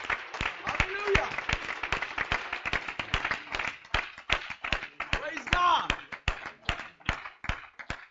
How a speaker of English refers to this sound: Let's clap our hands to the Lord in a show of thanks. Amen?